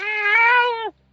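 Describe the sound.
A single drawn-out cat meow, loud, holding steady for nearly a second before dropping off at the end, followed by silence.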